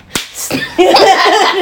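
A single sharp hand slap to a face cracks out near the start, followed after a short pause by a wavering, voice-like tonal sound that continues to the end.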